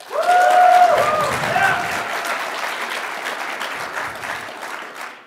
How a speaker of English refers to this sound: We need an applause vote here on this.